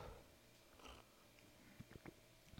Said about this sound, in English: Take a sip of coffee here real quick.